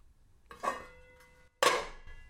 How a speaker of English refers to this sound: Or, maybe pots. Kind of heartwarming. Maybe pots and pans. Maybe pots and pans banging around might be anxiety provoking.